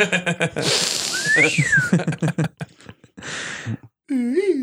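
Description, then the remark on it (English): A thin, rising-and-falling whistle from breath pushed out through the nose, followed by a breathy exhale and another short wavering whistle, amid people talking. “That's how it sounds when you breathe out of your nose.”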